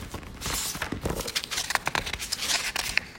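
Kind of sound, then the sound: household object, paper being handled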